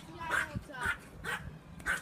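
A female Yorkshire terrier, let outside, barks four times in a steady, evenly spaced rhythm, each sharp, high-pitched yap clear.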